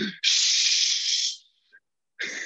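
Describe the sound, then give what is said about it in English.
A long, loud human shush, a broad hissing "shhh" held for over a second, followed by a pause and the start of a second shush. “So every time that fucking door would open, we would just shush people as loud as we could.”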